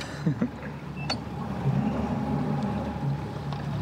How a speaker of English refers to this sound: pulls the boat through the undergrowth into a clearing in the forest, and suddenly hundreds of giant cypress trees are all around us.